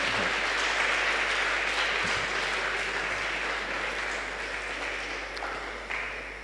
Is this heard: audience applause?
yes